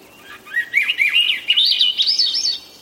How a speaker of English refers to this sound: If you're lucky, in late spring in the forests of the north and west, you'll hear the melodious spiraling song of the Swainson's thrush.